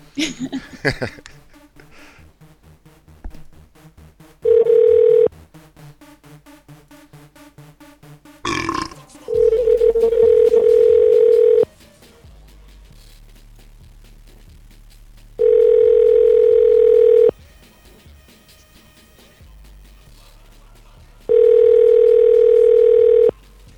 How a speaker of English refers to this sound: This is the number for a cellular phone company. Let's see what happens when we dial it.